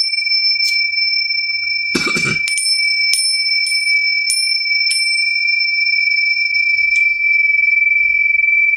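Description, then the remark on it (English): Small, thin cymbals ring with a steady, bright metallic shimmer, struck lightly several times at uneven intervals, with one fuller, noisier clash early on; fairly loud, no voices. “You know, those weak little cymbals would be better if they were gongs or bells.”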